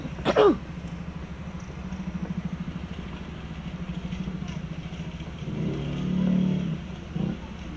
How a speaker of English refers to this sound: The motorcycle!